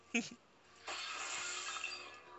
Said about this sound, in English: I just heard that glass break.